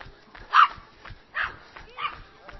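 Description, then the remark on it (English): Dogs bark and yip in three short, sharp bursts spaced about a second apart, not loud, over a faint background murmur, as the speaker passes dog walkers on Hampstead Heath. “There we go, past the dog walkers of Hampstead Heath.”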